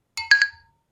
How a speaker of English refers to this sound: I like when we have the bottle and the glass because you get the nice sound effects.